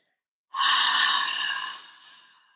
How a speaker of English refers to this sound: We're going to inhale. 2. Hold it, and then we're going to exhale.